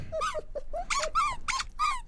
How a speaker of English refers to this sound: Now all their dogs are going crazy.